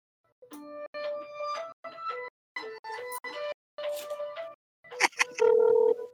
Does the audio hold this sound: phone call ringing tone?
yes